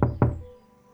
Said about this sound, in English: knocks on the door.